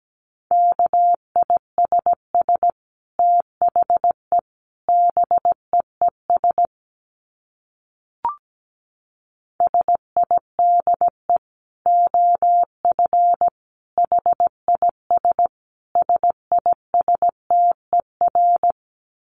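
Morse code sent at 17 words per minute: a single steady mid-pitched tone keyed into quick dits and longer dahs, running in groups with a short silent gap partway through.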